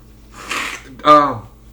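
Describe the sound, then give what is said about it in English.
Someone with a runny nose blows it: a breathy rush of air followed by a louder, honking nasal blast, all within under two seconds. “You hear me blow my nose, dude.”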